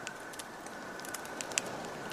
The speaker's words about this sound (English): Ahead, there's a small fire. Hear the crackles? Smell the smoke.